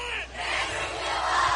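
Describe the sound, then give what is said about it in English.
A football crowd at a Hanceville versus West Point game cheers and yells in a loud, steady roar, with a brief dip at the start before the noise swells again and holds without letting up. “And we're getting a lot of chirpiness from the crowd.”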